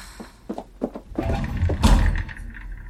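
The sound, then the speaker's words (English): Heavy bridge doors slam shut: a few short knocks lead into a loud, booming bang with a low rumble that quickly fades. It is forceful, with no voices. “I didn't know it was possible to slam the bridge doors.”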